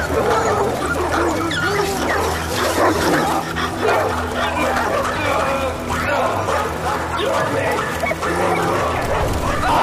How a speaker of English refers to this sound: Let's see how your tone changes as you get torn apart by dogs.